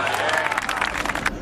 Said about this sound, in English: I love the sound of the birds after that. And the golf clap. Oh, the bird track and the polite golf. The sweet little bird and the golf clap.